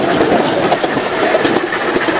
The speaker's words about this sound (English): There's a very big blue steam engine following up behind us in a 264 configuration.